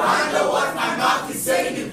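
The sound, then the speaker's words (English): A church audience shouts together in prayer in loud, overlapping bursts, a sustained roar of many people rising and falling across two seconds with no single speaker standing out. “Shout this loud and clear.”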